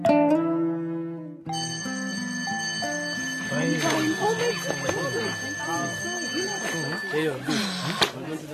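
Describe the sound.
A bright, sustained school bell rings steadily for several seconds, signaling a break between classes, over a busy background of voices and chatter, after a brief tonal sound at the start.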